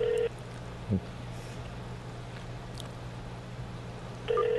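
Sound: phone dialing tones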